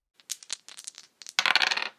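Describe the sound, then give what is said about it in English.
Two dice rattle and clatter across a hard tabletop in a tabletop role-playing game roll, landing on a 4 and a 5; a scatter of sharp clicks first and then a dense, bright burst of tumbling as they settle. Fairly loud, with no voices. “That's a 4 and a 5 on the dice.”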